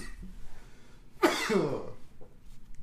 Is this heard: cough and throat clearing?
yes